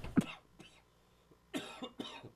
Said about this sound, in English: The weird part of this is that, man, here I go again. When I'm laying down, I never cough.